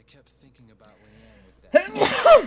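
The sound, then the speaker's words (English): A single loud sneeze erupts abruptly after some quiet speech, with a sharp intake followed by an explosive burst that stands out clearly above the soft talking before it. “Excuse me. Bless you.”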